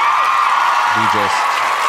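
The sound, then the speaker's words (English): Steady, dense applause fills the whole moment, a loud wash of many hands clapping with no pauses, while a brief low voiced murmur surfaces underneath partway through. “Applause for them.”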